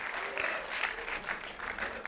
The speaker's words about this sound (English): So circle that one. That's applause break on that one.